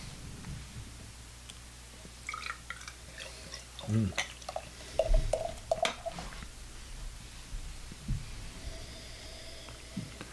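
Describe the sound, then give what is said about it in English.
Filtered beer from a bottle pours into a glass, very clear and darker golden, with gurgling splashes, drips and a fizzy crackle over a low background hum, followed by a few soft clinks as the pour settles. “Very clear pour, yeah, not very, hazy.”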